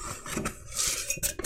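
Moderately loud rustling as half a sheet of paper is folded down and rolled up, then a few light clinks and scrapes as it is set down inside a glass mug. No voices.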